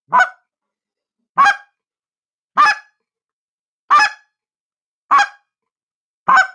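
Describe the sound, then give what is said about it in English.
Six slow, evenly spaced clucks blown on a goose call, each note short and honking with a clear pause between, loud with no talking. “There's three different clucks. It's just changing my air pressures a little bit and try and expand your vocabulary in that cluck.”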